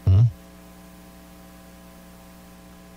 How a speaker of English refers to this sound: Do you hear my computers humming? Yeah, I do.